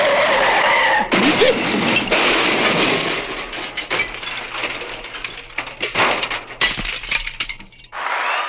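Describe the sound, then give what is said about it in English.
Tires screech loudly in a long skid, then a violent crash of crunching metal and shattering glass, with debris clattering for several seconds before a brief final screech. “I wanted to hear the car crash.”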